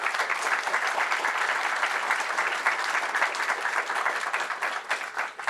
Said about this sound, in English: So let's give a round of applause for our panelists.